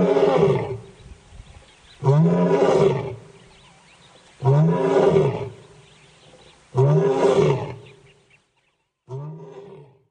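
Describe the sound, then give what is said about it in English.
A lion roars in a series of deep, powerful bursts, four full roars spaced about two seconds apart followed by a shorter, weaker one, loud with no talking. “And here is a roaring lion, how it looks like and how it sounds.”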